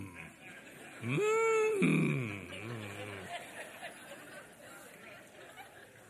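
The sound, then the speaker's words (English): A Baptist audience in a church lets out a loud, drawn-out moan lasting about two seconds, its pitch sliding downward, then fading into a low murmur of voices and crowd babble. “Look at those, all those Baptist holy mooing right now.”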